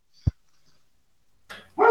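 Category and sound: animal, dogs barking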